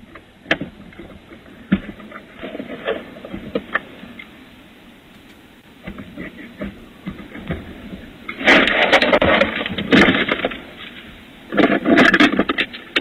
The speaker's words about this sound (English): So there's a guy rooting around in the truck, and this lady is off camera.